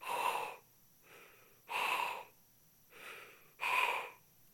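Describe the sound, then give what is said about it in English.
A voice imitates an F-16 pilot's heavy, rhythmic breathing through a mask during a combat flight in the Persian Gulf War: five loud, airy breaths, alternating stronger and softer inhales and exhales at a steady, slow pace. “And you could hear the pilot breathing, something like this.”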